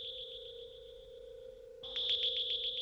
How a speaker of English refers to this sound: Do you hear it? It's a curious humming sound that seems to come from inside the object. I'll move the microphone nearer. Now we're not more than 25 feet away. Can you hear it now?